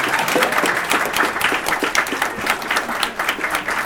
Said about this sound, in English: Big round of applause for these guys. I think that was really interesting.